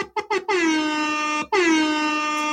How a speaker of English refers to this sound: Hip-hop air horns to you. Air horns.